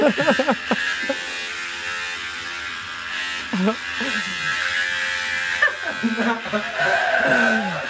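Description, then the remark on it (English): An electric shaver buzzes steadily throughout during shaving, with a bright, continuous motor hum, while people talk over it in short bursts. “Yeah, I think I have that shaver.”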